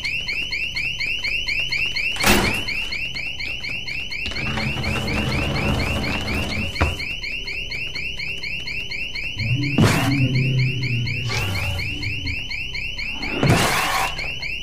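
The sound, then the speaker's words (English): A loud electronic alarm blares continuously in a city, pulsing rapidly at a high pitch, while sharp bangs and bursts of clattering, rummaging noise break in at intervals. “Gotta get this alarm turned off before it attracts every freak in the city!”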